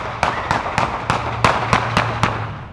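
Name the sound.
gunshots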